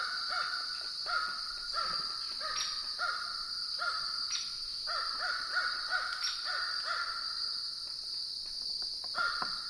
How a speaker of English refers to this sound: A crow sounds off overhead